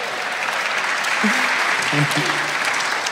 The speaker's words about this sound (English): Oh. Sorry, round of applause for